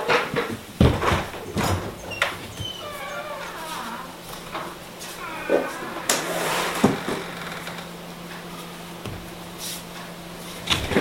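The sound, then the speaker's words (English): A door being opened: a series of clicks and knocks from the latch and handle, with squeaky, wavering creaks in between, then a few more sharp thuds near the end. “Let me see if I can open my door again, get some air.”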